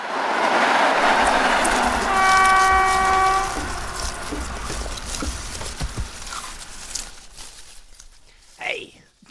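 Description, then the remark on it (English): A moving train rumbles and clatters loudly along the rails, with a steady horn blast sounding for a couple of seconds early on before the noise gradually eases off. “Quick, Toots, let's jump out of this moving train.”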